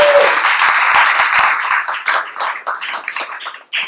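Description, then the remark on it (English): A crowd applauds loudly for a man called up to come forward, a dense wash of many hands clapping that gradually thins into scattered individual claps toward the end, with no voices. “Give him a hand clap.”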